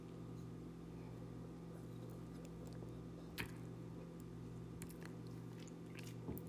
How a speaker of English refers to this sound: Okay, one more sip.